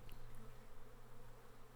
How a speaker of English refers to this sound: You hear a buzzing, dull sort of drone, low and tonal. Bees? It kind of resonates deep within your chest.